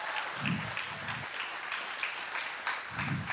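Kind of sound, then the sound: crowd, audience clapping and shouting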